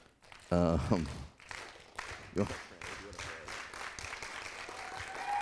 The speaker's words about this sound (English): So she gets a slow clap, too.